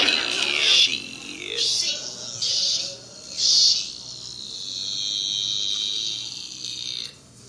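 A high-pitched, chirpy phone ringtone plays on its own: a few short, bright bursts in a quick pattern, then a longer, steady trilling tone that cuts off abruptly.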